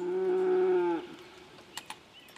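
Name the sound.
cattle mooing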